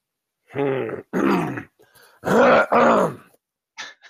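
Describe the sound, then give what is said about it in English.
A voice clears phlegm from its throat in gruff, voiced bursts: two quick rasping grunts, a short pause, then two louder ones, ending with a brief faint rasp. No words are spoken. “There was no meaning behind that throat clear.”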